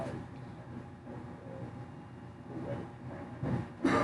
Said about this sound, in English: I don't think it's you. I'm telling you, it's the air conditioning. I hear that.